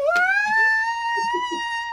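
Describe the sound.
A person imitates a high-pitched scream, a single sustained shrill wail that rises at the start and then holds steady and loud for about two seconds.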